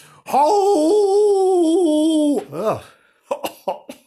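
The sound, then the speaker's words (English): A voice telling a story imitates a sad, mournful howl: one loud, long, wavering note held for about two seconds, then a brief dipping swoop, followed by a few short coughing bursts. “That's a howl, that is.”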